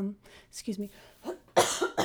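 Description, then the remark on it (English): A person with a little cold coughs sharply and loudly, a harsh burst near the end, preceded by a few soft vocal sounds and throat noises. “I have a little cold, so I may have to cough away.”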